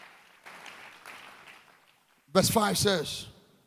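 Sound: audience clapping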